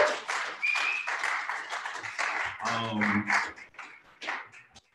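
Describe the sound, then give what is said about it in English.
A crowd applauds steadily for Cassius Cam for several seconds, a dense rattle of many hands clapping with a few whoops and a brief low murmur of voices partway through. “Ladies and gentlemen, Cassius Cam, clap it up for him, please.”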